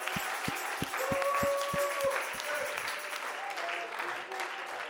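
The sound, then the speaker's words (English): A church audience claps hands to the Lord in a steady, rhythmic beat that stands out sharply for the first couple of seconds, then blends into a looser wash of crowd clapping with voices underneath. “Come on, clap your hands to the Lord.”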